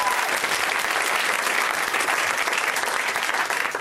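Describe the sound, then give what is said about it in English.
A crowd claps steadily for a few seconds, a dense, even wash of applause that stays loud and sustained from start to finish, with no one speaking over it. “Yeah, you can clap for the UCB.”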